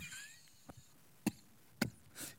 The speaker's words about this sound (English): I got one of those coughs today that hurt your head. Like you cough and you feel like your brain's disconnecting in your head.